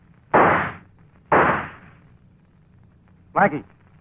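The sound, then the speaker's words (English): Two loud gunshots, fired to miss on purpose, ring out about a second apart, each a sharp crack with a short, rumbling tail, followed by a brief shouted voice over a low steady hum. “You know I missed on purpose, but next time I won't, and on purpose.”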